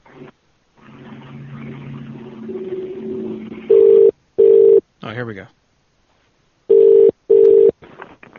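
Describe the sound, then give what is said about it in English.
Loud telephone keypad tones sound through a phone line as a number is dialed to call back: two pairs of steady beeps separated by a short pause, after a stretch of murmured talk and humming line noise. “It doesn't let me enter in someone's phone number now.”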